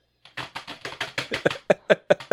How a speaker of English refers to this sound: He's like, but he hits the keyboard like, like violently assaulting the keyboard.